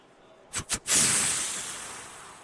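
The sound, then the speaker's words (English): A human voice imitates a whitetail buck's snort-wheeze, a call used during the rut: two quick, sharp puffs of air followed by a long, loud, drawn-out hiss that fades gradually, alone with no talking. “I want to talk snort wheeze later. It's incredible.”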